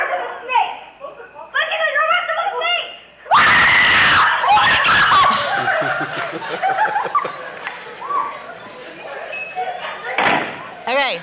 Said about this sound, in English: And I hear a blood-curdling scream that I swore there was a drive-by and seven bullets were going to be in one of my daughters. I got to get out there. So this is last Friday night at our house on the front porch.